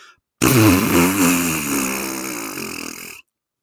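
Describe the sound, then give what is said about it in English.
A long, loud Bronx cheer blown with the lips, a buzzing raspberry lasting close to three seconds, its wobbly pitch wavering before it cuts off abruptly. No one talks over it. “And so while we would like to wish good luck to both teams, we won't, because they're so incredibly disappointing, among the most disappointing in the world, and we will end it the only way that is fitting, and that is with our weekly Bronx cheer.”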